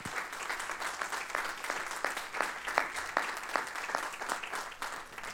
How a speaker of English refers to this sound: If you love your pastor and your first lady, give them a hand clap. Amen.